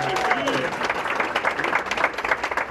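An audience claps steadily for a featured speaker being introduced at a business event, a dense, sustained wash of applause with a few faint voices and a brief whistle-like tone early on, staying loud throughout.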